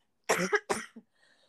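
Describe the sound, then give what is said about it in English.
Two harsh, barky, seal-like coughs in quick succession, fairly loud, followed by a short throaty catch and then near silence. “I'm also still got this barky seal cough, everyone, so I'm really sorry.”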